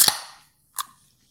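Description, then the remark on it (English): An apple crisp hard seltzer can cracks open with a sharp metallic pop and a quick fading fizz, followed by a second shorter snap a moment later. No one speaks. “And that's why I'm about to crack open an apple crisp seltzer.”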